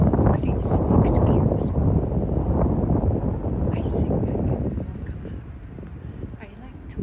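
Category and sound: nature, wind blowing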